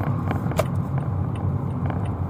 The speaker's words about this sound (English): Okay, now I have to cross. Yeah. But because he doesn't know there's a car, but I know there's a car going, then I just speed